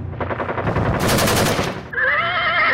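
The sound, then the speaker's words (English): Rapid machine gun fire rattles loudly in dense bursts, then a horse lets out a shrill, wavering neigh as the shooting fades beneath it. “A horse can't charge a machine gun.”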